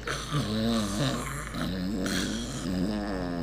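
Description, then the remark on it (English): An animal of unknown species snores steadily, a rough, rumbling drone whose pitch wavers up and down through each breath, with no talking over it. “And all animals snore, so we're not sure which animal this is actually.”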